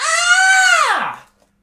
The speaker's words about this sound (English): I bet if I, you know what? If I just scream really loud, they'll stop the bus.